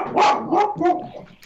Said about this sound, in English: Ooh, we've got dogs on this podcast, folks. They're joining us in the conversation.